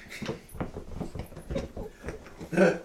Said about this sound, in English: It's being an average puppy and wants to play. That's exactly right.